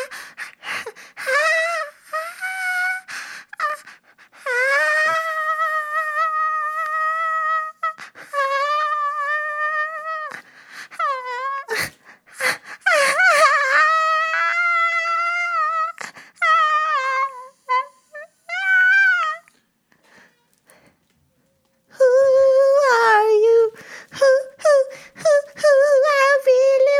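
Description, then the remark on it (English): A soft, drawn-out scream let out on finding human bones in North Carolina: a single voice holding long, high, wavering wails, several in a row separated by brief gaps, sustained at a moderate level with no talking. “Well, the first move was a tiny extended scream softly into the void.”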